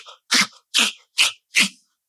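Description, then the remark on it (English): A person mimics a dog lapping water with four or five quick, wet slurping sounds in a steady rhythm, fairly loud, with no talking. “lapped up water like dogs with their faces to the water.”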